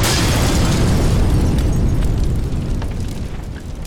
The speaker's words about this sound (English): The Naiad launches hunter-seeker countermeasures, destroying the incoming torpedoes, but one of their hunter-seekers continues on course to Keneally's ship and explodes, and the ship begins to sink, dropping the XB-23 into the ocean.